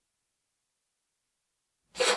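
After about two seconds of silence, a cat lets out a single short, breathy hack as it starts coughing up a hairball, abruptly cut off at the end.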